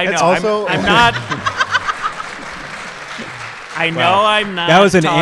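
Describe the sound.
A burst of audience applause with some scattered laughter rises after a man's voice, dense clapping fading out over a few seconds before he resumes speaking.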